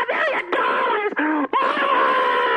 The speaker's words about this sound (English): Stop it! Stop it! Well, I'm very excited. That's a lot of money. Okay, you don't scream. We're on the air.